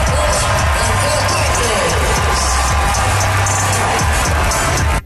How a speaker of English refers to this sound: Okay. Not exactly golf claps. Better than that, but it certainly wasn't raucous.